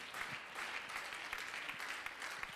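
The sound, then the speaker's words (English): A church audience bursts into sustained applause, giving the Lord a hand clap of praise as Brother Urshan comes to preach; many hands clap at once in a dense, steady wash of sound that fills the room without pause, no voices standing out. “And so give the Lord a great big hand clap of praise as Brother Urshan comes to preach the word of the Lord.”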